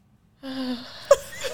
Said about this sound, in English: She's nervous. She's scared, boy. Look at her breathing down the mic. Yeah, trembling in the mic.